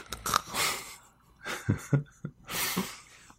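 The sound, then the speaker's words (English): During a tabletop game, a voice imitates snoring as a character falls asleep: a few rough, breathy inhale-and-snort cycles with hissy rasps and short guttural bursts, fairly loud, and no words spoken. “the snore noise is the international tabletop sound for.”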